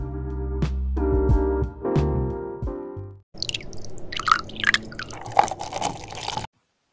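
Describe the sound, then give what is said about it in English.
A few ringing tonal notes give way to close-up liquid sounds of tea being poured and sipped: wet drips, trickles and soft slurps, with no one talking. “Get your cup, do whatever you have to do, and get ready for your light, savory sip.”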